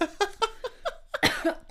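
A rapid fit of about eight short, strained coughs from someone choking on their own spit, some hoarse and voiced, with one harsher, breathier burst near the end.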